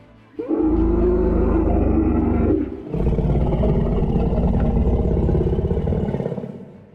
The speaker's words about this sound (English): A loud roar rang out.